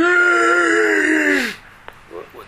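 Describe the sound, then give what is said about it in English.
A man's voice imitates a loud, drawn-out yawn lasting about a second and a half, sliding downward before trailing off, followed by a brief click and faint breathy sounds. “Sometimes you see the people in the synagogue, in the middle of the Amidah, they're yawning.”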